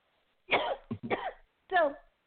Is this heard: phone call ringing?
no